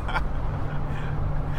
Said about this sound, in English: We're in a car, dude.